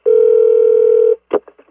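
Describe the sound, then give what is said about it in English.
A steady telephone dial tone hums for about a second, then cuts off and is followed by three quick dialing beeps, clear with no one speaking. “To make sure I was heading in the right direction, I made a phone call.”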